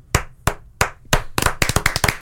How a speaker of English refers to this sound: A last podcast on the left, full round of applause.